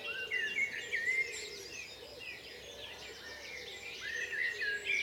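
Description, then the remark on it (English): A blackbird's fluting song phrases stand out in brief bursts at the start and end, set against a busy, steady chorus of birds and insect-like chirping outdoors in the hills of West Dorset, England. “And I'm just hoping he sings happy birthday, this blackbird.”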